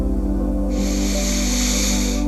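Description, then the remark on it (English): A long, steady breath drawn in through the nose, a soft airy hiss lasting about a second and a half, over a constant low background hum. “In through your nose.”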